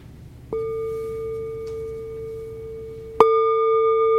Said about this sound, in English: Maybe, you know, maybe this, so the sound of the bell.